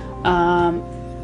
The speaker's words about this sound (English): My cat is going nuts. I don't know what's wrong with him. Holy, what is up with you? Wow. Okay, so I'm making supper, and the cat's going nuts.